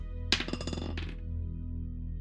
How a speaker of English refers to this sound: He's picking up dice very meanly.